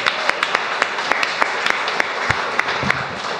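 A crowd applauds steadily, a dense wash of many hands clapping with a few sharper individual claps standing out, fairly loud and close, with no voices.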